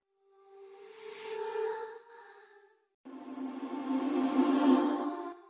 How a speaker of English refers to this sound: Yep, I rendered it out so I can't see it exactly, but it sounds like it's just a little bit of delay in there too, and then just reverb, and then reversed. It's probably just called evil because it reversed reverb sounds kind of evil.